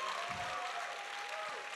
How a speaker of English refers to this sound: Oh, come on. Can we just clap like there is 2,000 people? Can we clap like there really is a revival on the way?